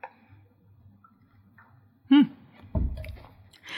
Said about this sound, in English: Reminds me to take a sip of my hot chocolate here.